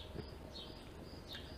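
Faint birds chirping outdoors by a back deck: two brief high chirps rise over a thin, steady high-pitched trill, with a soft low rumble of background noise underneath and no talking.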